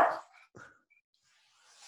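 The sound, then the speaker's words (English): A dog named Lucius barks twice in quick succession, the first bark sharp and fairly loud, the second shorter and softer, followed by near silence with a faint hiss. “The dog's name is Lucius?”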